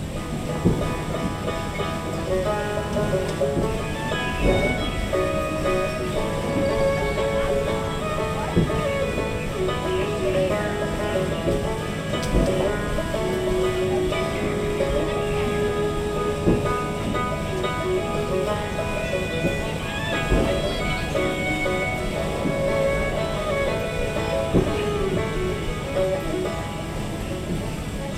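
Steady ambience aboard the Mark Twain Riverboat ride at Disneyland, recorded binaurally: a continuous engine rumble with droning mechanical tones and a wash of churning water, holding an even loudness throughout, with faint crowd murmur in the background.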